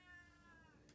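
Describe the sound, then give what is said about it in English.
A cat meows once, a drawn-out, wavering cry with no talking over it. “The cat seems to know the answer.”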